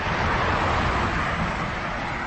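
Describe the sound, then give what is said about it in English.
A car passing on the left along the street, its steady rushing roar of engine and tire noise filling the moment, with no one speaking. “Oh, here's a car passing me on the left.”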